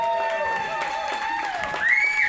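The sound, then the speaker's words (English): An audience applauds the hosts steadily for about two seconds, the dense clapping mixed with sustained, high-pitched whoops and cheers that rise toward the end. “Before I tell you, can we give our hosts a round of applause for putting us in the middle?”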